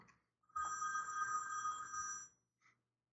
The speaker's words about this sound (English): Oh, I have a phone call. I'm just going to have to ignore it. Why didn't you silence your phone? I'll be right back.